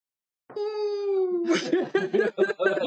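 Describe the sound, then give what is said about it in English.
A person hums and whistles at once, holding one steady, buzzy tone for about a second before it breaks into bursts of laughter. “You hum and whistle at the same time.”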